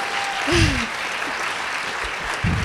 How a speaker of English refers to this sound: We have a hard time with clapping.